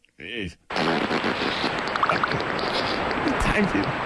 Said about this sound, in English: That's a bathtub fart right there. But instead of a bathtub, it's a lake. That's all it is. So let's get this beaver some Tums, man.